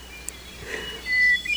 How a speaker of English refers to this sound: in Maine's 100-mile wilderness, listening to a duet between two hermit thrushes. I know these are hermit thrushes because the very beginning of the song starts with a clear single note and then spirals up higher than the song of most other thrushes.